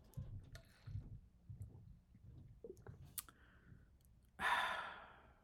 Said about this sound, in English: But before we get into that, a sip of water.